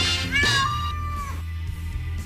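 A single drawn-out cat meow, clear, rising then sliding down in pitch over about a second, with a low steady hum underneath and no talking.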